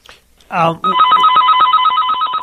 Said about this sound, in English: Your alarm went off, man. That's the snooze alarm, just to make sure after your nap.